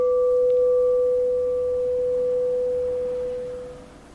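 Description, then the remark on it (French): A meditation bell rings out with a steady, pure hum, its higher overtone dying away first while the lower tone lingers and slowly fades to quiet over about four seconds. “Et de la disparition de la conscience de la cloche.”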